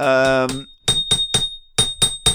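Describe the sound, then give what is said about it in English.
A resonant ashtray is tapped six times in two quick groups of three, each sharp knock followed by a short metallic ring, over a thin, steady high tone, after a brief humming harmonic sound. “my new bring ashtray. Your phone. Look at that resonance. Hear that resonance.”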